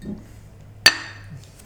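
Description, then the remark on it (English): A single bright clink of glass beer bottles tapped together in a toast at someone's house, ringing briefly before fading, heard over a low, steady background hum with no talking. “It's been nice to come over to your house and have a couple of beers and no worries, and kick back.”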